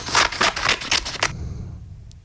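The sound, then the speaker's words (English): Scissors snip quickly through stiff construction paper, about eight crisp cuts in a steady rhythm before the sound stops and leaves near silence. “Oh, it's scissors cutting paper.”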